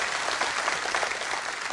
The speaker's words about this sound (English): Someone needs to give God a hand clap because he's given you a promise.